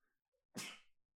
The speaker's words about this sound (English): Wow. That's a lot of sneezes.